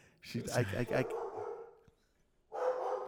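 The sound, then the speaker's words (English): A female dog barks in a quick run of loud, yappy barks, trailing into a drawn-out whining sound before another burst of barking starts. “My dog, she's so verbal.”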